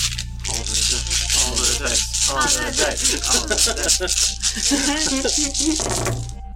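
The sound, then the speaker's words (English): A big handful of dice is rolled, clattering and rattling continuously for several seconds, fairly loud, with people's voices murmuring underneath. “Does somebody want to roll all the dice?”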